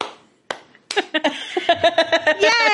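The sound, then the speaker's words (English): Open-finger hand clapping: a few sharp, bright claps, then a quicker rhythmic run of claps mixed with voiced laughter that carries through to the end. “And the clap. Gotta do open finger clap.”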